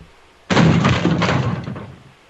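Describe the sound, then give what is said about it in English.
A single heavy kick lands on a room door as someone tries to get in, a loud booming impact that rattles and rumbles for about a second and a half before fading. “They're kicking at my door.”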